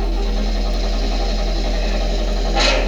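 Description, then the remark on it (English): A wrecked van engine with no compression cranks steadily with a continuous mechanical churn and low rumble, never catching, followed by a short hiss near the end. “He wrecked the van. No compression.”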